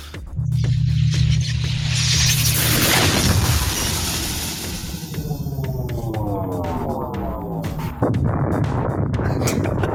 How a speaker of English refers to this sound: Here's our light plasma torpedo launcher sound. Just preparing everybody.